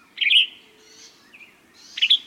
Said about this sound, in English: The tops of flowering trees are busy with yellow-rumped warblers and western tanagers, northern nesters that winter in Mexico.